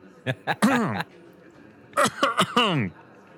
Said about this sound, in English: … is clearing her throat. You okay?